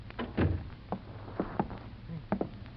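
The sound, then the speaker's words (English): A door is pushed shut, heard as a handful of dull wooden thuds and knocks spread over a few seconds, with low background hum and no one speaking. “Shut the door.”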